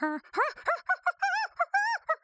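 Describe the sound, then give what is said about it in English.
A voice imitates a jungle toucan call with a quick run of about nine squeaky, croaking squawks that bend up and down in pitch, loud and choppy, with no speech. “That was a jungle toucan? Bird.”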